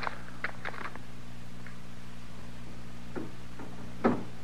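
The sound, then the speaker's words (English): A door rattles in short, irregular bursts, a few quiet clattering knocks spread out over several seconds, with a low steady hum underneath and no voices. “Is somebody working the door that way?”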